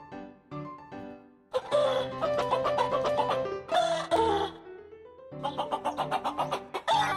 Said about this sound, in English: I'll play more of the chicken while we wait for this. Here we go.